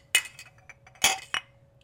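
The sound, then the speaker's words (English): Glasses of Antique 107 Kentucky straight wheated bourbon clink together in a toast, two bright ringing impacts about a second apart with a softer third tap, fairly loud, then a faint lingering ring. “Didn't we say these clinks were a little bit too loud last time?”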